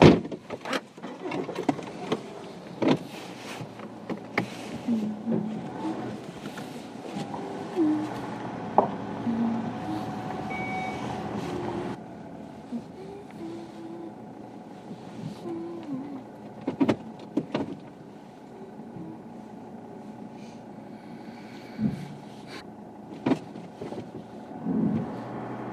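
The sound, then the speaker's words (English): A vehicle's engine hums steadily while a horse box is maneuvered into a parking spot, broken by sharp mechanical clunks and rattles. The noise lightens partway through, and no one speaks. “Just to park the horse box.”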